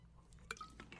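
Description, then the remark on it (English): A quiet sip of Le Bleu bottled water (ultra pure, oxygenated, BPA-free): a brief watery slurp with a faint bottle clink in the middle, followed by a few soft liquid sounds, with no talking. “And allow me to thank Le Bleu for this delicious, ultra pure, kosher, oxygenated, BPA-free water that I'm drinking on this episode of Bulavanaka.”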